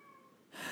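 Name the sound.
cat meowing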